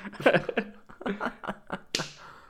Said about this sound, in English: I'm going to flip a coin and tell you if it works or not.